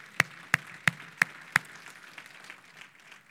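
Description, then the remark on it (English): An audience gives the Lord a hand clap of praise: five sharp, evenly spaced claps in unison, then a patter of softer, scattered claps trailing off. No one speaks. “Come on, we ought to give the Lord a hand clap of praise on that.”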